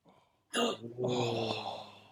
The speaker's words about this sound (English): Oh. You did it. You got a gasp.